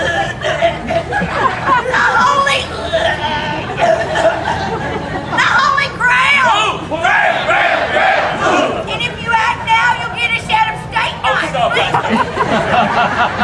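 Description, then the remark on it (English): A loud crowd of many voices, assembled to watch a secret challenge, shouts and chants Galahad's name together, a dense wall of overlapping calls with rising, repeated cries that swell and dip steadily throughout. “All right, now the crowd had assembled to watch this secret challenge. They began to chant for Galahad's name.”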